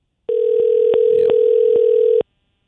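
One ringback tone from an outgoing phone call to the caller's wife: a steady, slightly buzzy hum lasting about two seconds, fairly loud, with faint clicks and no voices.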